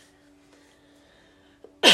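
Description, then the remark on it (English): A sudden, loud dry cough bursts out after a stretch of near silence with only a faint background hum. “At least they're dry coughs.”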